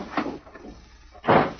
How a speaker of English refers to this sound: The door burst open and Mike stood facing him.